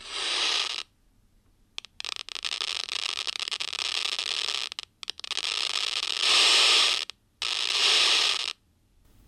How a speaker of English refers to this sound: And the burst of static, that's the seizure part? Exactly. So seizures are when huge numbers of neurons or brain cells all fire in synchrony in your brain, and they're not firing in any kind of coordinated, coherent way.